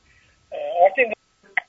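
A short electronic phone tone sounds as a call is answered, a bright warbling chime lasting about half a second, followed after a pause by one brief, quieter beep.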